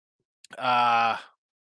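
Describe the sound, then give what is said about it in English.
A single drawn-out yawn from one person, fairly loud, starting with a short breathy intake and swelling into a sustained voiced groan that fades after about a second. “Excuse me as I yawn here. I'm yawning on you here, Ray.”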